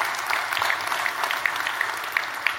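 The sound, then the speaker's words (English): An audience claps steadily, a dense wash of many hands with a few sharper individual claps standing out, sustained at an even, moderate loudness throughout with no talking. “And in February, we want to clap.”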